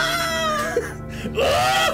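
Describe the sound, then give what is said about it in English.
A person imitates a fox's scream: two drawn-out, wavering, shrill wails, fairly loud, with a brief dip between them and no other talking. “I shit you not, literally listen to a fox scream.”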